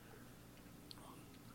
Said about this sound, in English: Should we sip? I like this little martini guy. Yeah, let's sip.